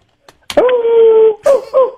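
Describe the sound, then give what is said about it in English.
A dog named Angel lets out a long, sustained hound-like howl lasting most of a second, followed by two shorter wavering yowls, loud with no talking. “Kind of a hound. Kind of a coyote slash wolfhound there.”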